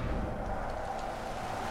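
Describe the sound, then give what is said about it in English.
A dense, steady roar of heavy rain with a deep rumbling undertone like rolling thunder, from a storm summoned with a Storm Call spell during a fight with a blood dragon, holding at a constant loud level throughout with no voices. “Pardon me if the rain is really loud for a minute or two here.”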